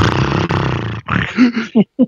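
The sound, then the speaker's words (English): A voice imitates heavy sleep-apnea snoring: a long, rough, rattling snore followed by strained choking gasps and two short, sharp grunting catches of breath, loud and without speech. “It's like you were fighting for breath.”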